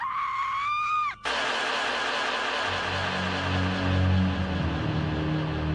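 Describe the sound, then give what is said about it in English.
A single loud, high-pitched scream echoing through the woods at night holds for about a second and breaks off abruptly, giving way to a steady wash of hissing noise with a low, rumbling drone beneath it. “They ignored the screams that echoed through the woods that night.”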